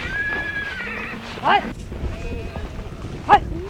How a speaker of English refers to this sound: Before us, on the wide yellow steppe, are a bunch of horses crowded together, galloping furiously.